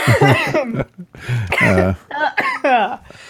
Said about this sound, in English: Whoops. Yeah. Just choking on water. It's cool.